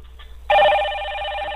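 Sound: cell phone ringtone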